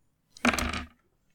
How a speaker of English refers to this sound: I rolled on the dice a 3 and a 1. If it's with advantage, can I re-roll the 1?